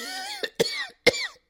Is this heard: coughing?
yes